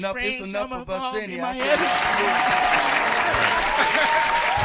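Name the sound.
canned applause sound effect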